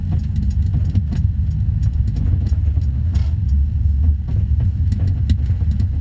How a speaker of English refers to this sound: Bus just pulls out and it's just right in front of all these people.